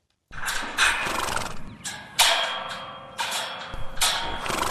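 A wild brumby horse whinnies loudly, its drawn-out neighs rising over a steady clatter of hooves and movement, with no voices, at Clearview Brumby Rescue near Thangool in Central Queensland.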